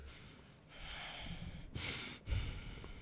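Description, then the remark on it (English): Heavy, forceful breathing through the nose, a few hissing inhales and exhales in quick succession, with a snorting edge and no talking. “…'s just breathing aggressively”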